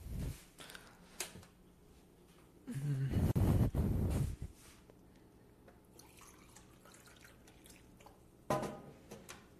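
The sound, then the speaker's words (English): Water runs from a tap in a loud burst of a couple of seconds as someone gets a drink of water, framed by faint drips and small clinks, with no one talking. “But I'm gonna get some water first.”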